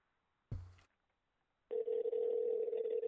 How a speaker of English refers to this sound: You can just aim it at me, and I'll dial it, and they can figure out the tones that come through.